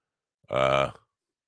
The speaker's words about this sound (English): I just farted. It's not, hope it's not colon cancer. I don't believe that's a sign of colon cancer. I think that's a sign of gas.